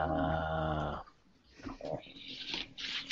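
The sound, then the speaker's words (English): A dog snorts, starting with a long throaty, nasal grunt, then a string of short breathy snuffles and snorts. “I apologize for the dog snorting, but not really much I can do about well, it.”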